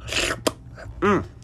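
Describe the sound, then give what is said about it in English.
A quick slurping sip of tea from a cup with an airy hiss, followed by a sharp little click and then a brief voiced sigh of satisfaction. “Ooh, first of all, let's just take a sip of our tea.”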